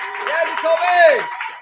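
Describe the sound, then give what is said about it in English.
A crowd gives a last round of applause for Jacoby Jones, a dense wash of clapping that holds for under two seconds, with a rising and falling vocal whoop or cheer riding over it. “But one last round of applause for Jacoby Jones.”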